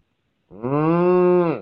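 A single long, steady cow moo, loud, rising in at the start and holding evenly for about a second before tapering off, with nothing else around it.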